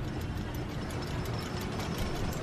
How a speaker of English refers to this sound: Click, click, clicking up a hill, about to free fall into a double upside-down cobra barrel roll.